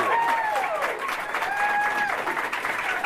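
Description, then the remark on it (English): Sustained audience applause at a live Star Wars comedy quiz show, May the Blank Be With You, hosted at Convergence: a dense, steady patter of many hands clapping at full volume, with high whoops and cheering voices rising above it throughout. “Thank you very much for coming and for applauding.”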